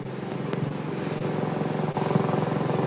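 A helicopter passes by the window, its steady rotor drone and low rumbling engine filling the air and growing slightly louder toward the end, with no voices.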